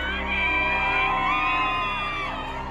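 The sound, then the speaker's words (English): A crowd of Johnny Depp fans outside the Virginia courthouse cheers and whoops loudly and steadily, many overlapping voices shouting and yelling together in a sustained roar with high-pitched cries rising above it. “Outside the Virginia courthouse, Depp fans gather to cheer on their hero.”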